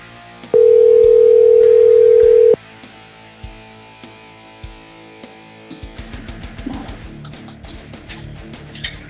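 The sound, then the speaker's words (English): A loud, steady telephone dial tone hums for about two seconds, then cuts off. A quieter stretch follows before a busier run of short electronic tones and clicks as a number is dialed to call the guest, Dean Delray. “Let's see if we can get him on the phone right now.”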